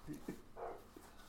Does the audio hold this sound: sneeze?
no